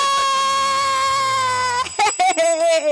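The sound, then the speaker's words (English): A bell rings out with a bright, sustained metallic tone that hangs for nearly two seconds, then a person starts talking as the ringing fades. “And the next on the list, drum roll, get that bell, is the fun size Keynotes.”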